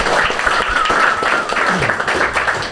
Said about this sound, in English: Thank you very much for coming. Give yourself a round of applause, first of all.